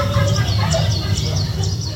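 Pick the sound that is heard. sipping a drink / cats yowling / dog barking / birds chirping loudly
birds chirping loudly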